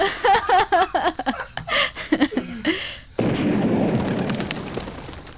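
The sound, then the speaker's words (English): A single sudden gunshot cracks out after a few seconds of chirping bird calls, leaving a loud, lingering wash of noise and rumble that carries on to the end. “That was a gunshot.”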